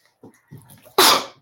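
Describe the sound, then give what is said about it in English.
A couple of soft, catching breaths build up, then one loud, explosive sneeze bursts out, trailing off quickly. “I'm going to sneeze.”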